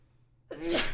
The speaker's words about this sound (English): sorry, I need to sneeze. No, you're right. Bless you.